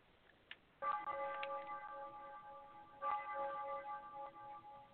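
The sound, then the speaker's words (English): A ding-dong chime rings out twice, each bright, bell-like strike followed by a long shimmering decay of clear tones, with a faint click just before the first one and no talking. “And there's the ding dong.”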